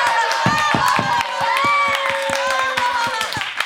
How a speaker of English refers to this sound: Thunderous applause and laughter come from the audience.